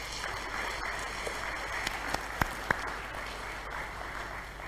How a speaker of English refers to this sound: Can you all just give them a big round of applause this morning? Thank you.